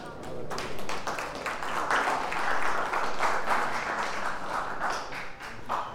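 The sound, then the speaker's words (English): An audience claps together in a steady, dense wash of applause that holds at an even loudness for several seconds, with a faint murmur of voices mixed underneath. “Now, the clapping was nice, but I said, lift your hands and thank him.”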